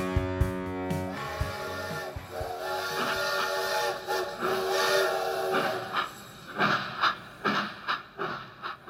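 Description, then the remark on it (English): A steam train whistle sound effect, the "Gary Rowett Express" train, blows for about a second, followed by loud hissing steam and the engine's chuffs, which grow into a steady rhythmic puffing near the end. No one speaks. “That sound effect you can hear is, of course, the Gary Rowett Express train, which has started up again in the wake of a blistering 3-0 win over Watford at the Den last night.”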